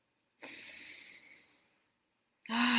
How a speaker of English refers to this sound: And let's just start with taking a deep breath. Let's take a deep breath together. Deep breathing.